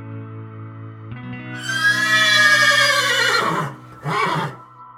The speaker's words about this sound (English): My horse squealed, reared, bucked, and pitched me headfirst onto a giant, yellow-flowered, prickly pear patch. I landed face-to-face with an enormous, buzzing rattlesnake and understood why my usually placid gelding had gone suddenly loco.